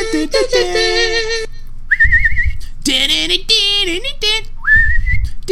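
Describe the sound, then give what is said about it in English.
A whistled melody with a wavering, trilling pitch comes in short phrases, alternating with loud, brassy sustained musical notes over a low rumble, from the theme music of a TV football pregame show. “What's up with the whistle, too?”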